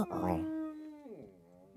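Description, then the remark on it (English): A person's voice attempts a Godzilla roar, coming out as a strained, high-pitched wail that holds steady, then slides downward and fades within two seconds, sounding more like a squealing cry than a roar. “If you didn't hear that, it kind of sounded like a dying dolphin.”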